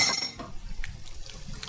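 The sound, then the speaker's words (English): Broth made from Better Than Bouillon concentrate mixed with water pours into a cooking pot, a short rushing splash that settles into a low sloshing, with a few light metallic clinks from the pot. “And I like to use the Better Than Bouillon broth, which is a concentrate, and then I mix it with water.”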